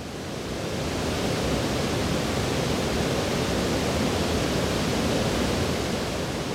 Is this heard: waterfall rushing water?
yes